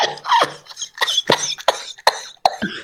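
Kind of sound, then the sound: human body sound, coughing mixed with laughter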